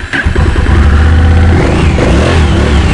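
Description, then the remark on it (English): An 1100cc motorcycle engine, a DCT cruiser model, cranks and fires up with the key, then settles into a loud, deep, throbbing rumble with a brief rev, with no one speaking. “An 1100 engine, so the size of a car engine on a bike.”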